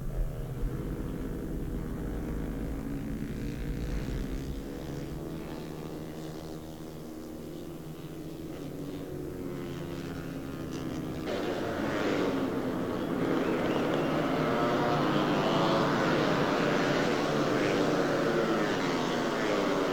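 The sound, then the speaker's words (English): Loud, continuous motorcycle engines roar as bikes race to the finish at the conclusion of a motorcycle race, their pitch rising and falling with the throttle, then swelling into a harsher, broader roar for the final stretch. “Just watch this amazing conclusion to a motorcycle race.”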